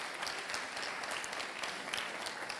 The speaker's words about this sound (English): But I love the words of that song, and by the way, how good did the worship team do this morning? Would you please give them a massive round of applause?